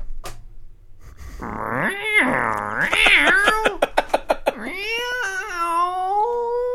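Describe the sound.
A voice imitates a cat, drawing out wavering, whiny meows and yowls, then a quick run of short sharp clicks before a final long, rising meow, fairly loud.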